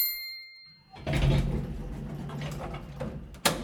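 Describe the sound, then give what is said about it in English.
A bright elevator chime rings out and fades, then a low mechanical rumble of sliding doors and a moving car takes over, ending with a sharp clunk. “Now your weekly rundown of what's going up and what's heading the other way in the Place North elevator. Doors closing, going down.”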